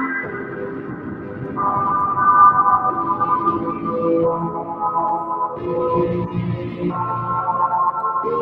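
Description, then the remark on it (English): Sustained, washy synth tones drenched in heavy reverb with pre-delay, with notes smearing into a continuous ambient haze and shifting pitch every couple of seconds; steady, moderately loud, no voices. “Man, that reverb sounds so good.”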